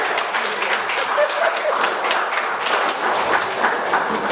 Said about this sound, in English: Here at BH, we need a round of applause.